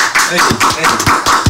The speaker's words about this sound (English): Everybody, let's give him a round of applause.